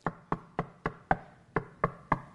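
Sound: knocking on a door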